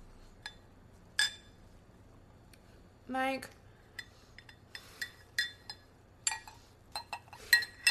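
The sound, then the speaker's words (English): A reusable straw clinks against a glass in a run of bright, ringing taps at irregular intervals, some sharper and louder than others. A voice briefly says a word midway through. “Not the reusable straw.”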